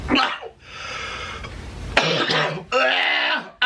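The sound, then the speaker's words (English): Breathy, whooshing airflow from a CPAP machine worn over a man's nose, mixed with rough, strained coughing and throaty gasps in several loud bursts separated by brief pauses. “And you can hear the CPAP machine he is wearing over his nose in this video.”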